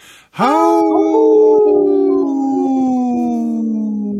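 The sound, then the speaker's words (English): Human voices imitate wolves with a long, sustained howl that swoops upward and then holds, several overlapping pitches blending into one loud chorus that slowly fades. “And we're, you know, we just howled”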